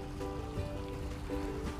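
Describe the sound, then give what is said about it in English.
Steady, gentle water of a small brook flowing over stones in the morning, with a continuous burbling texture and no voices, at a constant moderate level. “Beautiful little brook. I didn't have time to stop by yesterday, but I certainly do love the sound you're giving me this morning.”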